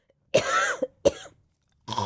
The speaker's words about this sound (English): So I am about to cough again, so All right, that's fine.